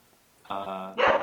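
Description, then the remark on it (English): A little puppy barks: a drawn-out, high-pitched yelp followed immediately by a sharper, louder bark, with a quiet moment before. “The mean bark of a little puppy.”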